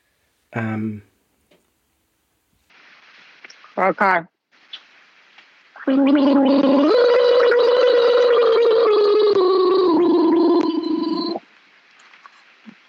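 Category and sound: human body sound, gargling water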